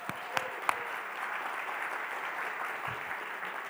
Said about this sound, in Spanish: Denle un aplauso a los que se van a casar.